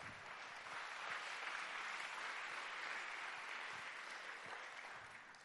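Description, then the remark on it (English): An audience claps their hands to the Lord in a sustained, dense burst of applause lasting several seconds, loud and steady before tapering off slightly at the end, with no one speaking over it. “Clap your hands to the Lord if you will.”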